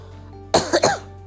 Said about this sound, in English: Sorry, I'm coughing.